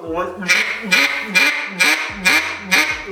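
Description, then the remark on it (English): A duck call blown, giving a steady run of about six loud, nasal quacks spaced evenly about half a second apart, each a short raspy burst. “So you got a quack, like just one.”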